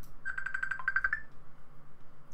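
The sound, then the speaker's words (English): A phone ringtone for an incoming call chirps out a quick run of bright electronic beeps, around ten rapid tones in about a second, then cuts off, leaving a quiet hum with no talking. “Man, see, now I'm getting a phone call in the middle of a podcast.”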